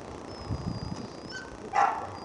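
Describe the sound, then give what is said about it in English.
Dogs bark and whimper as they are put into kennels and taken away, with a few muffled low barks followed by thin, high whines and a short, sharper yelp near the end. No one speaks. “As she watched her dogs get put into kennels and taken away, Barbara seemed to regret asking for help.”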